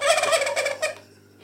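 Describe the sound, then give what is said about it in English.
A turkey gobbles in one rapid, warbling burst of repeated notes lasting about a second, fairly loud, then cuts off into quiet with a low steady hum underneath. “What is that? It's a turkey.”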